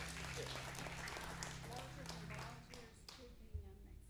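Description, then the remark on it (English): A church audience claps together in a dense, steady burst of applause, a clap offering to the Lord after a prayer, that tapers off toward the end, with a low hum and a few murmuring voices underneath. “Give the Lord one more clap offering if you would.”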